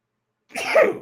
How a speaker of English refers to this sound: Bless you. Thank you. That sneeze was on tape delay, like in the old days.